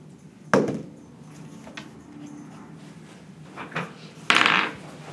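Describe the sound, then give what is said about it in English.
Dice rolled by a dungeon master clatter onto a hard tabletop: a sharp knock at the start, a few faint ticks, then a brief bright rattling tumble near the end, with no talking. “The dungeon master is currently rolling the dice and adding up the totals.”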